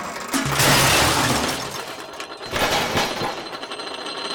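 A loud, chaotic crash of a suit of armor, knocked over by Neville in the Hogwarts trophy room, its metal pieces hitting the floor with clanging and rattling that tumbles on for several seconds and a second burst of clatter partway through.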